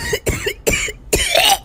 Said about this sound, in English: Mummy Bear cleared her throat with a little cough.